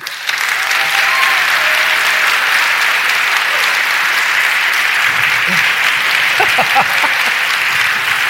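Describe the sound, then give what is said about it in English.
A crowd breaks into loud, sustained applause to welcome David Pettigrew, Associate Professor of History at Messiah College. A dense wash of clapping holds steady for several seconds, with a few faint voices and cheers surfacing toward the end. “let's give them a roaring applause because we're trying to get some compelling audio here, and we want to get that crowd noise in the recording.”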